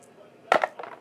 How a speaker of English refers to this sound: You have to roll the dice.